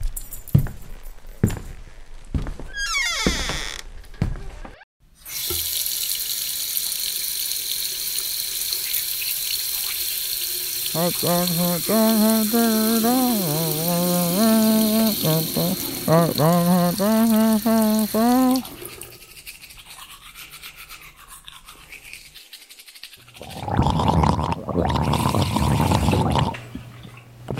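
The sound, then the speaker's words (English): Steady hiss of a running tap with the scrub of teeth being brushed, a voice sounding over the water partway through, then a final loud rush of water near the end. “I'm going to go brush my teeth.”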